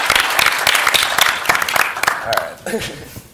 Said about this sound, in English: Really quick, before, just to change subjects, I just want to, we should all give a quick round of applause to all the papers we love people.